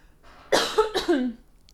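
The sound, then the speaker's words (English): Someone clears their throat with a few gruff, rasping bursts in quick succession, loud, then quiet follows. “And so right now I need to clear my throat, so I'm going to do that too.”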